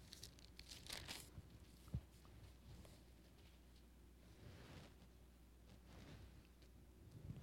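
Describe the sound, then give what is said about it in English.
Thin pages of an old Bible are turned several times, each a soft, crisp rustle, while looking for Philippians chapter 2. There is a brief flurry near the start and quieter flips later, with no talking. “Is mine the old Bible that's hearing pages turn?”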